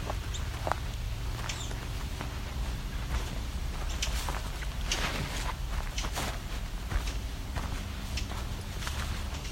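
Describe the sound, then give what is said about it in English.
Eastern towhees, two of them, give sharp, scattered ticking calls at irregular intervals on a side trail into a fen, over a steady low outdoor rumble with faint background birdsong. No one speaks. “That's the eastern towhee, actually. It's doing the ticking.”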